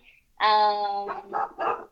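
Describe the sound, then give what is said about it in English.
A dog barks loudly: one long, drawn-out, tonal bark followed by two shorter, choppier barks in quick succession. “let me get this dog.”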